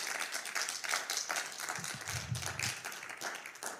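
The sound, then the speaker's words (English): Sustained applause from a crowd, many hands clapping in a dense, steady patter with a few brief low thumps in the middle, no voices. “Round of applause for Dr. David Edney.”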